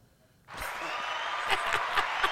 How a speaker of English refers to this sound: Hand claps.